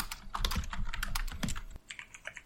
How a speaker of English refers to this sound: all right, we're all typing. Give me a second.